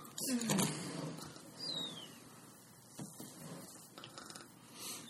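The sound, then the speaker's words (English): Someone softly imitates snoring as a sound effect: a low, rumbling snore near the start, then a few fainter breathy snorts spaced out, quiet. “Thank you for that very quiet, gentle snoring Foley work”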